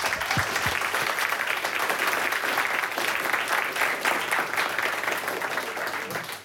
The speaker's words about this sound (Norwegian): Da gjenstår det bare å gi ordet videre til hovedpersonene. Gi dem en varm applaus.